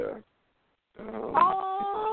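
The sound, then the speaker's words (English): A 9-week-old tri-colored Cavalier King Charles spaniel puppy named Pablo lets out high, drawn-out whining whimpers, its cries wavering and sustained for about a second, following a brief snippet of voice at the start. “He is 9 weeks Cavalier King Charles, tri-colored, like just the ultimate dog.”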